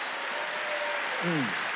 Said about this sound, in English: Clap your hands and praise God if you believe it.